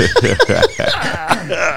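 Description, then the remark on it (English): Someone clears their throat loudly in a series of rough, rasping bursts mixed with voiced, grunting tones, all packed into a couple of seconds. “Excuse me, I had to clear my throat”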